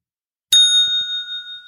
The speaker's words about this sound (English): Order's up. We get a bell.